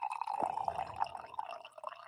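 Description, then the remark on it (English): Coffee pours steadily into a cup for about two seconds, a continuous trickling splash with a slight drip-like texture, moderately quiet, with no talking. “They're going to do a coffee pour.”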